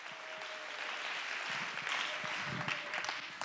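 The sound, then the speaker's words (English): An audience claps hands to give God praise during preaching, a dense, continuous wash of applause, steady and fairly loud throughout, with a faint sustained tone running underneath. “Oh, clap your hand to give God the praise.”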